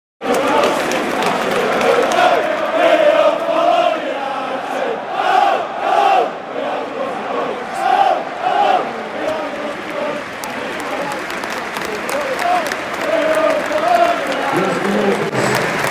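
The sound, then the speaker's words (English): A large football stadium crowd gives a minute's applause in support of Ukraine, players standing around the centre circle with a sign saying no war; a dense, sustained roar of clapping with scattered shouts and cheers rising and falling throughout, filling the whole stretch without a break. “And there's a minute's applause now.”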